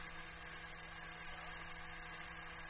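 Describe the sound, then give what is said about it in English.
A heavy tractor engine drones steadily, a constant low rumble with a vibrating hum that never changes pace, as tractors plow through jungle at about 2 miles an hour, knocking it flat. No voices over it. “They don't offer any resistance, Lemmy. The tractors are knocking them flat.”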